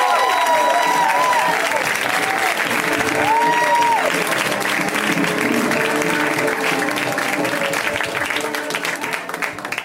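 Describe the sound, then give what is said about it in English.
An audience at the comedy show Put Your Hands Together claps loudly and steadily for the whole stretch as comedian Ella Gale is introduced for her first time on the show, with a few rising whoops and cheers early on, the applause thinning slightly as it ends. “So let's hear right now for Ella Gale, guys. Give it up for her.”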